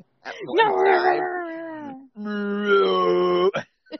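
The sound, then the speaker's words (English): A person mimics a howling in the wind with two long, wavering vocal calls, the first sliding down in pitch and the second held steady, fairly loud with a brief pause between. “Sound like a howling in the wind.”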